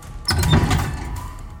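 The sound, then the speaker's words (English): A door opens with a sudden low thump, a brief high squeak, then a rumbling scrape that slowly fades over about a second. No one speaks. “Open the door.”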